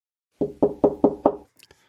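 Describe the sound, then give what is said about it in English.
Five soft, evenly spaced knocks on the wooden door of a closed bakery after closing time, moderately quiet, followed by a faint brief rattle as the knocking stops. “Suddenly, there's a gentle rapping at the door.”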